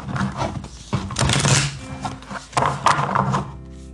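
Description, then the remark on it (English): Tarot cards being shuffled: several crisp, papery rustling bursts with short pauses between them, moderately loud, over a faint steady tonal hum. “Let's get a shuffle here.”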